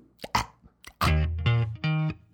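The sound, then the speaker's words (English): A person imitates a little baby's burps: a few quick wet pops and hiccup-like gulps, then three drawn-out, croaky voiced belches, fairly loud, with no other talking. “I had the little baby up here on my shoulder and I was burping her.”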